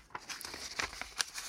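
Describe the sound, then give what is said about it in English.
Quiet paper rustling with a series of brief crinkles and soft crackles over a second and a half, as a piece of paper is grabbed and handled. “I'm going to grab a piece of paper.”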